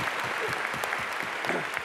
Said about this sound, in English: Let's give a round of applause before we start, everybody. Let's get this pumping.